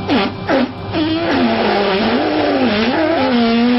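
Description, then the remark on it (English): A vacuum cleaner, used by a woman on her genitals in an OnlyFans clip, runs loudly and continuously, its droning whine rising and falling in pitch as the suction changes, with no one talking. “But just to give you a little sample, here's a woman using a vacuum on her pussy lips. That's what that sounds like.”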